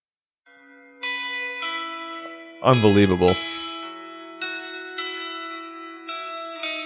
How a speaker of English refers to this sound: I was going to say, it sounds just like the song, but there's no... I love that song so much that it's my ringtone. But there's no strings.